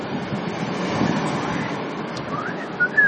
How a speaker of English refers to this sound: That was a terrible whistle.